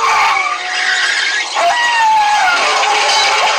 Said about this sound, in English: Now that last squeal that the dog did, I'm trying to tell y'all, they got that. I remember hearing that in the first Resident Evil game I had on Sega Saturn.